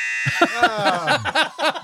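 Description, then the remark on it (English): A standard quiz-show buzzer gives a harsh, steady electronic buzz that runs for nearly two seconds, with choppy voice-like sounds overlapping it after the first quarter second. “Yeah, well, I've gone with a standard quiz buzzer.”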